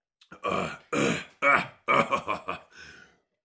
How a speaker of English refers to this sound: Oh, I got like a spicy burp coming up. Hold on. I put a lot of hot sauce on my baked ziti tonight.